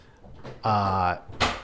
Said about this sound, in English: Let's wait for the door to slam.